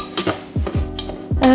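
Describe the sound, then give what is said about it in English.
Rice fries in olive oil, sizzling in a hot pan while a utensil scrapes and stirs it in quick, irregular strokes, with a few light metallic clinks. “Right, so I'm just frying my rice”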